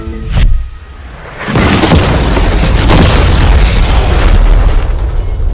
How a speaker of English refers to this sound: before we blow up the $300,000 car, we're gonna blow up a normal car to see if the passengers survive